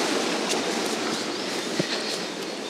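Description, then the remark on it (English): A river roars steadily below a bridge in a woods, a loud, continuous rush of churning water that fills the whole clip without pause, with a faint knock partway through. “Standing on the bridge, so you can hear the river. It's roaring away.”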